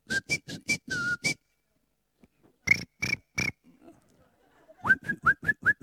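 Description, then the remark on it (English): A man whistles a birdsong imitation in three bursts of short, sharp, repeated chirping notes separated by brief pauses, loud, with a faint low rumble in the gap. “Because whilst I can't sing, I'm a very good bird whistler. This is what they were doing.”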